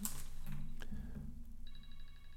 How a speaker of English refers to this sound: My phone was ringing there, so there was obviously an edit.